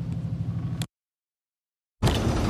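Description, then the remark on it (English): Steady low engine rumble and road noise inside a moving bus about 10 minutes from Dunsborough, cutting off abruptly into about a second of silence before returning, louder and rougher. “It's 1:09 and we're on the bus, probably around about 10 minutes away from Dunsborough.”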